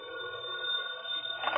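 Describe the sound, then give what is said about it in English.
A telephone bell rings in Britt Reed's office at the Sentinel building in one continuous, steady burst, a bright metallic tone that holds level throughout with no pauses and no voices. “That evening, Britt Reed was in his office at the Sentinel building talking to Ed Lowry when the phone rang.”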